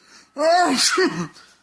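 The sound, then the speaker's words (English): A single loud sneeze from someone who has been sneezing constantly since petting a dog: a rising voiced intake that bursts into a sharp, breathy explosion and trails off, with no talking around it. “Man, I've been sneezing constantly since I pet your dog earlier.”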